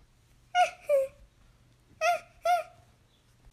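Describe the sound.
A child's voice imitates a cheetah's purr with four short, high, chirping calls, given in two quick pairs separated by a pause, each bright and tonal over a faint background hum.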